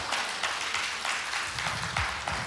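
A crowd claps for the Lord, a dense, steady wash of many hands with a few louder bursts standing out, continuing without a break and with no voices.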